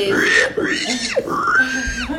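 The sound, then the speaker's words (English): A person's voice mimics a pig, imitating Miss Piggy, letting out about three loud, high-pitched squeals that rise and fall, with nasal oinking mixed in, one after another with no pauses. “Damn, these pigs...”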